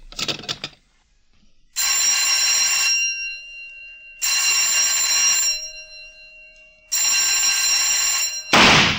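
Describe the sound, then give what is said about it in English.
A shooting range bell rings three times to signal the second half of rapid fire, each a loud, sustained metallic ring about a second long with pauses between, followed right after the last by a sudden sharp burst of gunfire. “Fire on third bell.”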